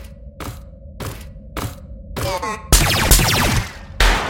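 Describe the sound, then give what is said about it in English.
Gunfire: four sharp, evenly spaced shots ring out, then a louder, dense burst of crackling fire and one final blast over a steady low hum. “Nice shooting.”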